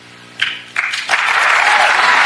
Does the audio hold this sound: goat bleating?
no